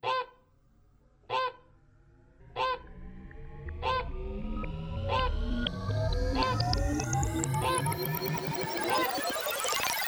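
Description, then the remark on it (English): Goose-like honks ring out in a steady rhythm, about one every second or so, then pile into a thick, continuous, louder blare of overlapping honking that climbs in pitch toward the end. “We honking, baby.”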